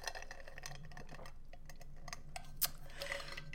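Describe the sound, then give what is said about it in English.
Someone takes a drink of ice water. Faint clicks and light ticks of ice shift in the glass, and one sharper gulping sound stands out near the end. No one speaks. “Ew, did you hear me gulp?”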